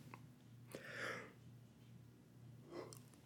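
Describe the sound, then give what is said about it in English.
A single quiet, breathy yawn drawn in with a low vocal tone, followed a moment later by a short exhaled breath, with no talking. “Excuse me, I had to yawn.”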